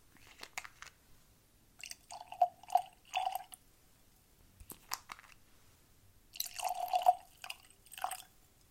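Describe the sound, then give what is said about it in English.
Beer being poured into tasting glasses in a few short bursts, with gurgling splashes and a bright glassy ring, separated by brief pauses. No one speaks. “Glasses and tasting cards are ready. Let's get these poured and jump right in.”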